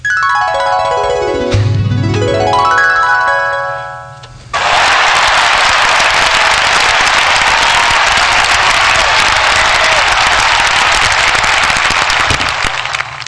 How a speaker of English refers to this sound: Cheering.